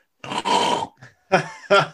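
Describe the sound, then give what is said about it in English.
A person imitates open-mouthed snoring: a few loud, rasping, rattling breaths, each a harsh guttural burst with short pauses between, and no speech. “And the question then about snoring is, so say, for instance, it's common that people snore through an open mouth, and it goes a bit like this.”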